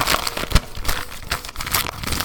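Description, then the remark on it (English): Gift wrapping paper being torn and unwrapped from a present holding a Ghost Rider number 3 comic, a steady run of crinkling, rustling crackles with a few sharper rips, fairly loud, with no talking over it. “Oh, this is some fun paper here.”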